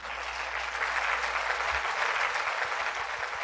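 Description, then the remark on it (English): Steady applause from a crowd fills the whole stretch, a dense wash of overlapping claps at an even level, with no voices breaking through. “Let's get a round of applause for me.”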